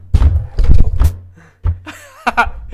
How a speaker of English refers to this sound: You're just banging on the table.